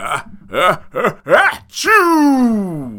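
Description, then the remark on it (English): A big, exaggerated sneeze by the character Ben Grimm, sick in bed: four quick voiced gasps build up, then a sharp burst breaks into a long, loud, falling vocal tone that trails off. “Well, besides receiving this indecipherable joke and giant sneeze, this explosive exhalation could have also crushed the child because it sent him flying.”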